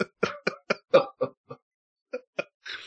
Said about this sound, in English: Bro, that was not a fart. I've just been on a lot of probiotics, and it makes my it makes my chair extra squeaky. My chair.